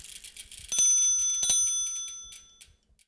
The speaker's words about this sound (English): Now, speaking of Hub and Spoke, let's hear that cute little bike bell and get going.